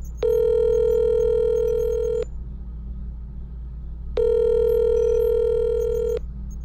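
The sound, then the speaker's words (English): A phone's ringback tone for an outgoing call purrs twice, each steady electronic ring lasting about two seconds with a pause between, over a low background hum. No one speaks. “Please answer the phone. I've literally been calling you for the last 3 days.”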